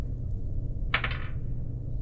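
A short, bright clatter of dice tumbling across a hard tabletop, a quick burst of rattling clicks lasting under half a second over a steady low background rumble.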